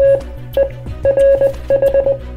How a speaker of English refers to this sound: Oh gosh, okay, here's the Morse code, jeez. If I could focus, I can get this code, okay?